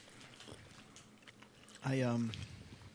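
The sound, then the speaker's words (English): Soft chewing of chewy Twizzlers licorice candy by several people, a run of moist smacking and clicking mouth sounds, interrupted by a brief loud voiced sound before the chewing carries on faintly. “No, well, we're chewing on Twizzlers.”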